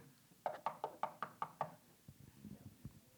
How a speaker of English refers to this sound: They'd be, and the law shows up, knocks on the door.